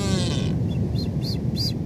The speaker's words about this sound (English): The Blue-Footed Boobies.